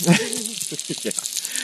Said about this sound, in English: Yes. That's a sizzling skillet.